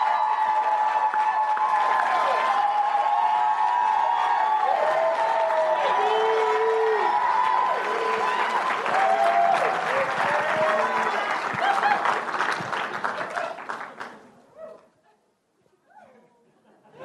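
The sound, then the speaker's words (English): A church crowd bursts into sustained applause with whoops and cheers after the announcement that a worship leader is now a full-time young adults pastor, loud and steady for about thirteen seconds before tapering off into a few scattered claps. “They don't cheer like that for me.”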